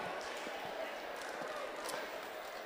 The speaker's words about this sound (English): With the sound of the claps, it sounds like y'all really mean it. Amen. Y'all really mean that.